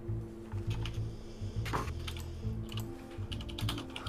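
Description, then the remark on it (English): Rapid, busy keyboard typing fills the scene, a steady stream of clicking keystrokes with brief bursts and pauses, alone with no voices. “Everybody's typing real fast.”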